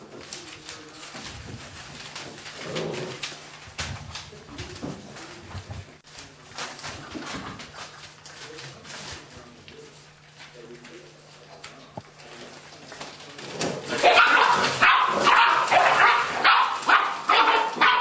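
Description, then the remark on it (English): Littermate puppies, one in a blue collar and one in a purple collar, scuffle and squabble over a bone, with low growls, whines and short yips that build into a louder, more frantic tussle toward the end as rank is established. “It's pretty obvious that rank was just established between the blue and the purple collar puppies here.”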